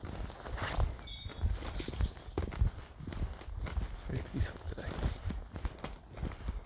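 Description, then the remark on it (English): Steady footsteps thud along an outdoor path at a brisk, uneven pace on a cloudy, damp day, with faint birdsong chirping in the background and some soft murmuring voices. “Feet are stomping. On the paths.”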